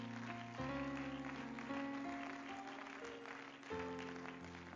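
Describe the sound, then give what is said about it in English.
A church audience, standing, claps steadily unto the Lord after a prayer, a dense wash of many hands, while sustained organ or keyboard chords ring out underneath and shift a few times. “And would you, before you're seated, clap your hands once again unto the Lord.”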